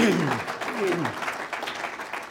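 An audience claps in a dense, steady wash of applause that holds at an even level throughout, with a voice speaking briefly over the opening moments.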